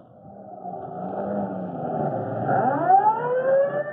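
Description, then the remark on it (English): A fire chief's car siren wails in rising and falling sweeps over the rumble of the car's engine picking up speed, growing louder across the few seconds with no voices. “Boy, I never went to a fire in a chief car before.”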